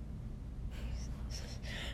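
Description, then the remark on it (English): Quiet snoring from a sleeping person: a few soft, breathy inhalations with a faint nasal rasp over a low rumble, with no talking. “She's sleeping. …'s snoring.”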